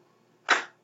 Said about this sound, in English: A clap.